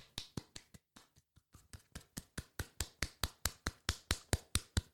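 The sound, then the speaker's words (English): A voice-free run of sharp, regular slapping claps, starting soft and uneven, then settling into a steady fast rhythm that grows louder, about twenty hits in all, imitating the clapping-like slaps heard from a cubicle in the men's toilets. “And I thought, either someone's giving themselves a round of applause in there for a good piss or something, or someone's bashing one out in there, bashing the bishop in the toilet, right?”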